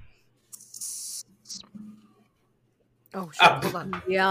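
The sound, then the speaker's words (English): A can of Vizzy blackberry and lemon hard seltzer cracks open with a sharp, sustained hiss of escaping fizz, then a second brief burst of fizzing; a person starts talking shortly after. “now I'm about to have a Vizzy with blackberry and lemon to keep on the blackberry theme.”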